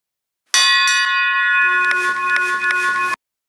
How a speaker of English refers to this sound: that big Austrian Doppelmayr bell hanging here that Jeff rang, and I'm going to ring again